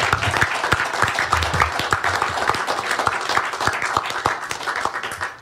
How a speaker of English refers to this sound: They've been doing this for months, and they really deserve a round of applause for that. Thank you.